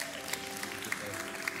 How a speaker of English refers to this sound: Wow, that was a terrible clap at the end. Did we put y'all to sleep or what in the world was the deal with that?